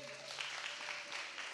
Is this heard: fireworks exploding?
no